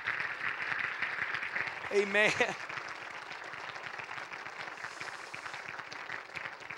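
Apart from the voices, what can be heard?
audience clapping hands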